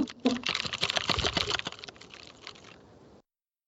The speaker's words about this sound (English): Who has the mechanical keyboard again? I do. Would you like to hear it?